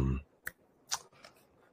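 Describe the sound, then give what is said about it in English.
Three sparse, sharp keyboard clicks spaced irregularly a fraction of a second apart, fairly quiet, following a brief low rumble at the very start. “I hear you typing.”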